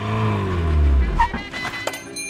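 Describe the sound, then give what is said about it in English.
A car packed with toys drives past on a trip across Denmark, its engine hum sliding lower in pitch as it moves, followed by a few short clunks and rattles near the end. “I packed them into my car and drove across Denmark selling them directly to toy stores.”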